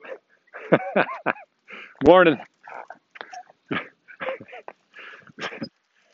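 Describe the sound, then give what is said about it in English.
A dog on a leash in a garage lets out short yips and a rising, drawn-out whine among scattered bursts of sound, while a person briefly speaks over it. “And there's a dog well behaved in the garage, not coming out. Oh, he's starting to come out.”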